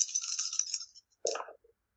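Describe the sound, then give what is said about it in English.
Moderately loud clicking rattle of dice shaken for about a second during a tabletop role-playing game, then a sharp clatter as they hit a hard surface and tumble briefly to a stop, showing a total of zero. No voices. “Okay, that is nullified dice, so zero on the dice.”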